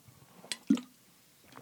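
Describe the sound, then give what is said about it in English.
Someone takes a quick sip of water, a soft wet slurp followed by a single gulping swallow, then a faint mouth click. “Excuse me just while I take a sip of water.”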